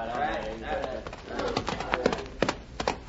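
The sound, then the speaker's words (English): Horses' hooves clip-clop in a loose, uneven rhythm at moderate volume, with a voice heard speaking underneath during the first part. “Put ropes on their horses just in case they get any bright ideas.”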